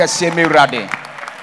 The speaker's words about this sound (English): Amen. Amen. Give the Lord a wonderful clap.